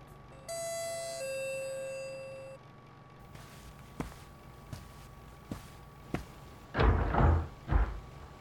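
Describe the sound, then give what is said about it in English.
A two-tone doorbell chime rings out clearly at a house as a package is delivered, followed by a few sharp clicks and knocks of a latch and the front door being opened, then a louder rustling bump as it swings. “I didn't like the idea of having a servant in the house anyway, so I answered the door myself.”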